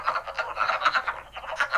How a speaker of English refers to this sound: What is that? That's a wood frog. He makes me feel weird.